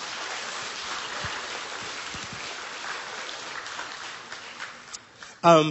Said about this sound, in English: Come on, why don't you clap your hands for the Word of God?